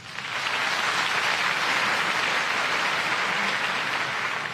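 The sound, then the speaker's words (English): A crowd applauds steadily, a dense wash of many hands clapping at once, loud and sustained for several seconds before easing slightly at the end, with no voices standing out. “Was there even any difference in the applause?”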